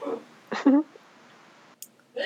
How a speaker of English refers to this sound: Gesundheit. Did you hear that? I did. It sounded like a sneeze with an Australian accent. Yeah, it was. He's a little sick.